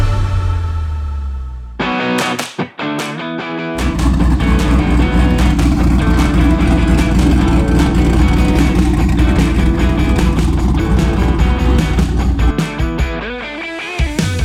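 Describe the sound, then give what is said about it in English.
A turbocharged 5.3-liter engine swapped into a 1986 Jaguar XJ6 idles with a low rumble, blips through a few sharp revs, then roars loudly at sustained high revs before settling back to idle, with no talking. “Those car sounds were sent in courtesy of Tanner. That is his 1986 turbo 5.3 swapped Jaguar”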